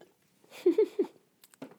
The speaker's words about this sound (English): Let me sip my Coca-Cola.